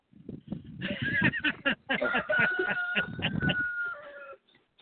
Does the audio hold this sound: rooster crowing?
yes